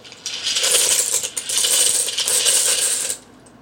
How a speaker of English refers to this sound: We're going to cook the pasta directly in the sauce, which is super easy. All you need to do is pour the pasta right in there.